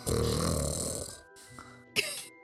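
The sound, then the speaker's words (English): A small dog snores with a long, rough, rattling breath, then falls quiet before two short, sharp snorts. The sound is fairly loud, with no talking. “I've got a dog snoring in the background here.”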